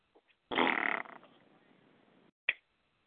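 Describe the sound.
A loud, buzzy raspberry (Bronx cheer) blown with the lips as Golden State scores, a rough flapping burst lasting about half a second that trails off into a faint rattle, then a short sharp pop.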